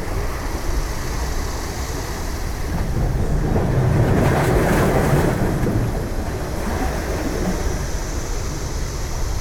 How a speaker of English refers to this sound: There are just waves.